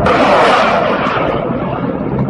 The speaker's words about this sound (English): Sound from Ukraine hours ago, a barrage of missile attacks, ground attack helicopters aimed at Ukraine's Air Force, setting the stage for a ground invasion.